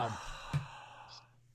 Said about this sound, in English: quit fucking breathing so loud.